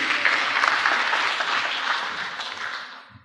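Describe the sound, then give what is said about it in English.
An audience breaks into steady applause in a church, many hands clapping in a dense, even wash that holds for a few seconds before tapering off at the end. “You can clap.”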